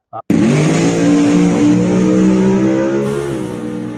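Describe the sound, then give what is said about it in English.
A race car engine revs hard after a brief blip at a drag strip at Tulsa Raceway Park, then holds a loud, rumbling roar with a steady droning pitch for several seconds. “Basically, there's drag racing, there's pulling, there's a big custom semi-truck show. They race semi-trucks.”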